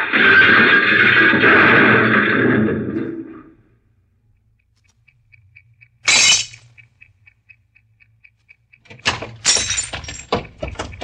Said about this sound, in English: Suddenly, it swerves toward the curb, smashes into the rear of a parked car, and comes to a stop on the sidewalk.